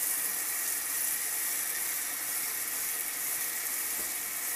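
Steady running tap water hissing and splashing continuously while an air fryer basket is rinsed, even in level throughout with no talking.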